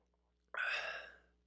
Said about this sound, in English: Hold on. A sip of the old Forrester here.